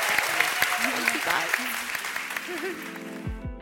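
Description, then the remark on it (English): An audience applauds a panel in a dense, steady burst of clapping, with a few voices calling out over it, before a short musical tone cuts in at the very end. “But please join me in giving a huge round of applause to our wonderful panel.”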